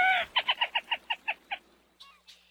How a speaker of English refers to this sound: as evidenced by this distinctive three-note territorial and mating call given by the male, mostly at night. The small as a sparrow and usually quiet as a mouse, black rail, Lateralis jamesensis.